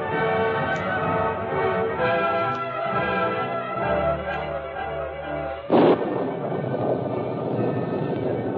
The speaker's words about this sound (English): High in the mountains, storm clouds emptied upon the rocks and crags below. It was a storm that endured for several days.